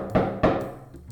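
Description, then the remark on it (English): Two solid knocks on a wooden door with a small slot and an eye slit, about a third of a second apart, each a dull thud that rings out briefly before fading into quiet. “Should we knock? Sure, she'll knock.”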